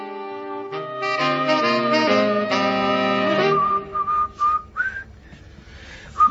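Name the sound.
person whistling a tune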